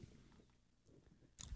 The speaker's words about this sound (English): What are you, Joe Mazzulla, chewing gum during the show over there?